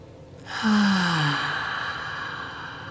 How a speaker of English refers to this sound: Oh, let's take a deep breath together.